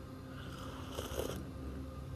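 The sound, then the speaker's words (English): A quiet sip of coffee from a mug: a short, soft slurping burst lasting under a second, with a low background hush and no talking. “Sending you a warm embrace today as I'm sitting here sipping on my delicious cup of coffee and my cute, adorable mug, XOXO.”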